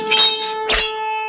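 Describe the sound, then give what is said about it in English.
A steady, buzzy horn tone like a shofar blast holds throughout, while two bursts of bright metallic clashing, like fencing swords striking, cut across it, the second sharper and shorter. “What you just heard there was good versus evil battling with the swords, and like they were, you know.”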